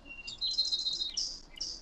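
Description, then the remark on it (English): High, bright bird chirps trill in quick overlapping bursts, fairly faint, from birds in a tree by a window in spring, with no talking. “I'm by the window and there's a tree by the window.”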